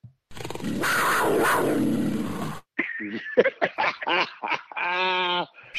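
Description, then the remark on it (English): A deep, rasping panther growl sound effect, played from a preloaded mixing board, rumbles loudly for about two seconds, then gives way to a run of short, shrill, harmonic animal calls. “Okay, so we've heard a panther growl, sound like the eagle's cry, and a gong so far.”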